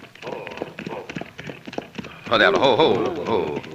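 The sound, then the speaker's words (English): Ridden horses' hooves clip-clop in a quick, uneven galloping rhythm, before a loud voice starts speaking over the continuing hoofbeats. “Now, down off your horses.”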